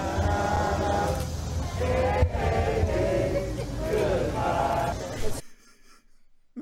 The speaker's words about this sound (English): But the crowd that's there watching this happen, they were singing one of the more famous songs from the Civil War period.